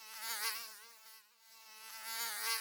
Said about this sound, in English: There was like a fly or a mosquito in my room that I think was put there by Donald Trump to make that night even worse for me.